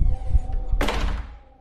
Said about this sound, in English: Close the door